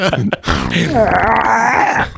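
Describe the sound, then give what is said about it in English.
A voice imitates a seal with a slow, drawn-out farting noise: a low, buzzy groan that wavers in pitch and stretches for about two seconds, preceded by a couple of short grunts. “And this slow farting sound as he turns into a seal to hide his tears.”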